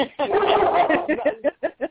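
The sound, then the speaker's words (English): A Karelian bear dog, the national dog of Finland and a bear-hunting breed, lets out a long, wavering yowl, then a quick series of four or five short, sharp barks, fairly loud with no one talking. “He is a Karelian bear dog.”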